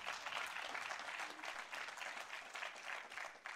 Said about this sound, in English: Amen? You can applaud. It's good.